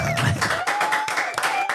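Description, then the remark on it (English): A studio audience claps for a show guest who has just reached one year sober, a dense, steady burst of applause with a thin sustained whistle-like tone running over it and no one speaking. “Online, studio, they're all clapping for you.”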